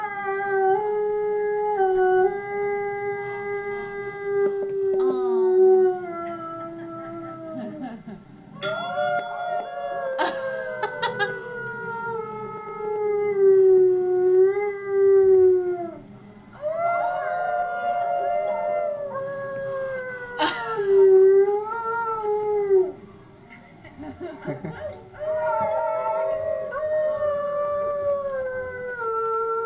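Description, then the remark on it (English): A big Arctic wolf howls in long, sustained, rising and falling tones, several overlapping howls across half a minute, fairly loud with brief pauses between calls. “Hear his beautiful Arctic wolf howl”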